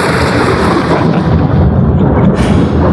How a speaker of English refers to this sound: You hear that storm in the background? Oh, yeah. Off in the distance.